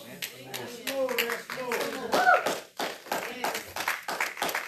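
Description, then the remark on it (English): A standing audience claps hands in praise to God in a steady, fairly loud rhythm of repeated sharp claps, with voices calling out and talking over the clapping throughout. “Stand to your feet, give God a good hand clap of praise, and say, dance some more, dance some more, dance some more.”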